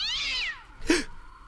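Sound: cat meowing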